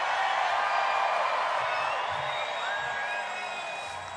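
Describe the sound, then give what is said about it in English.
A large New Year's Eve concert crowd roars and cheers continuously, a dense wash of voices with scattered high whistles and whoops rising above it, steady and loud throughout. “All right, it's a New Year's Eve crowd, I can tell you that.”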